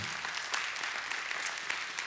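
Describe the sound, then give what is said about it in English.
An audience bursts into steady applause, a dense wash of many hands clapping at a fairly loud, even level throughout, with no voices rising above it. “That's a reason to clap.”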